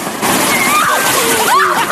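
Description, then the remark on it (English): A giant wave crashes onto people posing on a beach in a loud, sustained rush of splashing, churning water, with voices crying out over the roar. “They're sitting on the beach with a big wave coming.”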